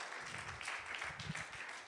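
A crowd applauds steadily, many hands clapping at once in a dense, continuous wash of sound that holds at an even, moderate level throughout.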